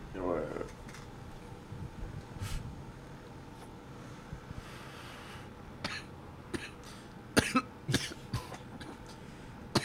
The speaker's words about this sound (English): I can't tell if it's a good cough or a bad cough. You know, there's good and bad coughs.